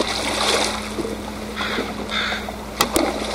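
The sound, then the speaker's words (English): Gentle water washes and laps in a calm inlet off the coast of Vancouver Island, among forested islands and a salmon farm's mesh net pens, with a steady low motor hum underneath and a couple of sharp, brief sounds near the end. No one speaks. “Forested islands float on dark water here in a quiet inlet off the coast of Vancouver Island.”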